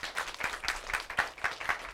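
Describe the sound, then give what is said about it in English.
A church audience claps their hands in a steady burst of applause as a clap offering to God, many overlapping claps forming a dense, even patter with no voices standing out. “Let's give God a clap offering to the Lord.”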